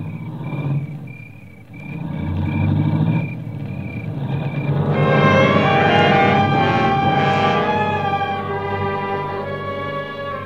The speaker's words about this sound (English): I heard the car leave, and I knew what it meant.